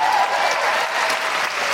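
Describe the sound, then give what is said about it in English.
Loud, dense applause from an audience, a steady wash of many hands clapping at once for the full stretch without any voices. “For that alone, a huge round of applause.”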